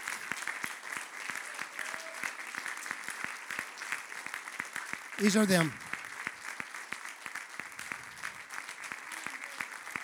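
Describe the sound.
Steady applause from an audience standing to honor and thank their ministers, a dense wash of many hands clapping, with a short spoken phrase cutting through briefly partway in.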